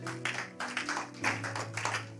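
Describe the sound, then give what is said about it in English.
Hand clapping in a steady rhythm, roughly eight sharp claps over about two seconds, moderately loud, with a low sustained hum underneath and no talking. “And because I respect myself, let me clap for that.”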